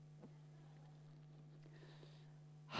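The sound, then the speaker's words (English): A sharp sniffle of the nose comes right at the end, after a few seconds of quiet hum with faint small noises and no talking. “So I'll just sniffle all the way through.”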